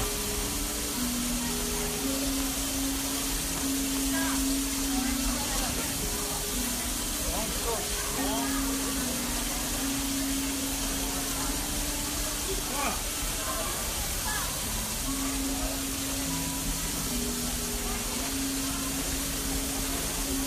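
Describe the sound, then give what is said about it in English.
Low, steady steam whistles from a steam train and a steamboat exchanging whistles, sounding on and off in alternating blasts over a constant loud hiss of steam, with faint voices in the background. “Did you catch the steamboat and the train exchanging whistles?”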